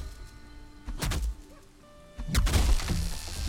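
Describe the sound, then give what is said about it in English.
A video game tree being knocked down: a sharp thwack, then a louder burst of crunching, crashing impacts, over faint steady background tones and with no talking. “See if I can knock this one down.”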